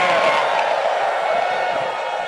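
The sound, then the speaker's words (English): A church audience jumps to its feet during a praise service and cheers and screams in a loud, sustained roar of many voices, with high whoops rising out of the dense wash of sound for the full two seconds. “Jump on your feet and scream.”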